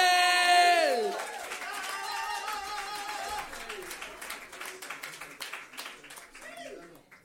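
A crowd bursts into loud applause as a performer is introduced, with a high whoop and scattered cheers at the start, then steady dense clapping and occasional shouts that gradually thin out.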